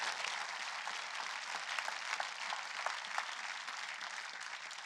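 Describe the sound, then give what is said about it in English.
A crowd of people clapping steadily for the Lord after a healing prayer, a dense wash of many hands applauding at a fairly even level for the full few seconds, with no voices standing out. “Give the Lord a clap.”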